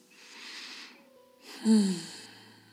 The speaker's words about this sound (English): In through our nose and out through our mouth. I love breathing deeply with you, refreshing my body with you. It feels so good.